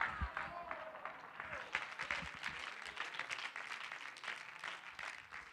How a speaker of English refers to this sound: Clap your hands and say, God's given us an open door.